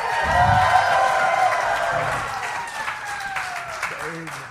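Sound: audience cheering and applause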